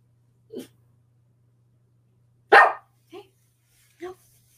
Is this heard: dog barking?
yes